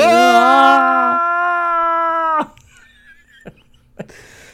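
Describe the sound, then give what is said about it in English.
A voice imitates the scream from the 80s movie Predator, where he sets up to fight the Predator. One loud, raspy, sustained yell lasts a couple of seconds. It wavers at first, then holds steady before cutting off abruptly, leaving a few faint clicks. “The Predator scream.”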